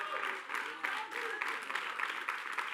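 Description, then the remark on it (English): A church audience claps together, a dense, steady patter of many hands at an even, moderate loudness, with no clear voices rising above it. “You're clapping, but when you're pastor gives you feedback, oh, I'm just leaving this church, and I'm going to go to an online church, and who are you to tell me?”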